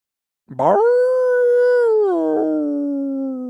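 A single wolf howls loudly, a long, sustained tonal cry that rises sharply, holds steady, then slides down to a lower pitch and trails on with no other sounds.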